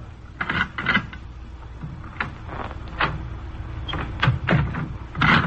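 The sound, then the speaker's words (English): A door is opened to look out into a corridor, with a run of mechanical clicks and clunks from the latch and hinges spread over several seconds above a steady low rumble. “Let me look out of the door.”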